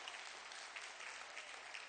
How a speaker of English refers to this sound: Did y'all learn something this morning? Come on, give the Lord a hand clap if you did.